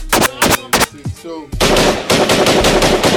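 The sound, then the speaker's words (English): Loud gunshot sound effects burst over a music beat, a few spaced shots at first, then a rapid rhythmic volley of bangs firing in time with the track. “I got gunshots in the beat.”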